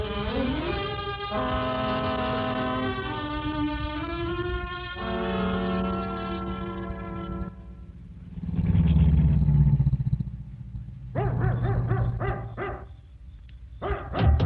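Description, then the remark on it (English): A dog barks several times in a rapid, loud burst near the end, after a stretch of sustained droning tones and a low rumbling noise. No one speaks. “It's all right, Bate. You can stop barking.”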